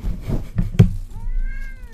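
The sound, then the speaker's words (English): A cat lets out one drawn-out meow, clear and fairly loud, shortly after a dull thump, with faint shuffling noise underneath and no one talking. “I've got, like, serious cat bites on my hand now.”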